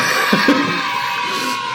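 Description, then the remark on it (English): A short burst of crowd cheering from the confetti effect in the video game Halo, played when confetti is thrown: a dense, steady wash of voices and noise lasting under two seconds with a couple of brief shouts early on. “One that plays in Halo when you have that one. when you throw confetti.”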